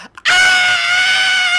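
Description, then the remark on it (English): A single loud, sustained scream imitated by a voice, mimicking plane passengers screaming, starting abruptly after a brief quiet breath and holding a steady high pitch for over a second. “Once you hear people scream on a – have you heard people screaming on a plane?”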